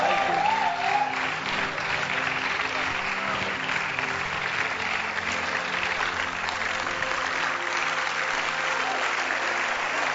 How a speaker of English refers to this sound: Are you clapping or not? Oh, beautiful.